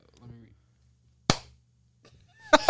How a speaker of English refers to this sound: All you gotta do is clap. We just gotta see it.